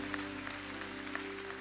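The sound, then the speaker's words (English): A church audience applauds for the church's last 15 years in a steady, dense wash of clapping with a few sharper claps standing out, while a low sustained tone hums underneath throughout. “And so just let's give Jesus a round of applause for the last 15 years, because he's the one that deserves it.”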